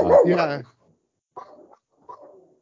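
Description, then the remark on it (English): A dog barks three times: one loud, drawn-out bark, then two shorter, softer barks after brief pauses, with nothing else in the background. “My dog does not like that idea.”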